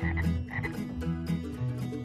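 Frogs croak loudly and steadily with no pauses, their low, throaty calls overlapping in a dense chorus that pulses in quick rhythmic bursts about twice a second.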